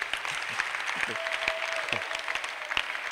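A crowd claps steadily in dense, overlapping applause, with a few sharper individual claps standing out and a faint sustained tone and murmuring voices underneath.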